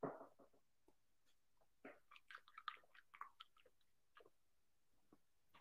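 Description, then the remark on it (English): Wet mouth sounds of a person swishing water around in their mouth, with a run of soft clicks and squelches, then a gulping swallow. Quiet and intimate, with no talking. “I just swished that water in my mouth and I swallowed, and hopefully that was a calming.”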